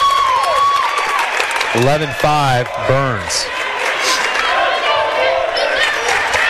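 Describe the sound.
A high school crowd of about 20 students cheers steadily for the girls' team at a volleyball match, a dense wash of shouts and noise while a commentator speaks briefly over it.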